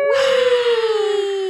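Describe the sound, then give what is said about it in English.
A single voice lets out a long, loud, sustained cheering cry that sinks slowly in pitch, mimicking a roaring stadium crowd. It lasts about a second and a half with no other sounds. “You did your own crowd work.”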